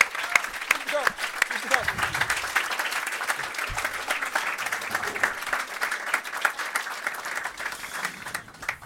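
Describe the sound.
Steady audience applause lasting several seconds, a dense patter of many hands clapping at even loudness, with a few voices faintly audible underneath.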